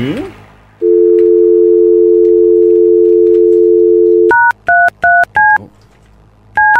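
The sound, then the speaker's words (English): A steady telephone dial tone hums for a few seconds, then gives way to a quick run of distinct touch-tone beeps as a telephone number is keyed in, clear with no talking. “Number done.”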